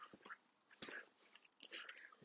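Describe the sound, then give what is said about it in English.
Quiet chewing of mint gum with the mint gone: soft wet smacks and clicks of the mouth come in irregular bursts over a couple of seconds, with no talking. “Oh, sorry, it's like chewing again.”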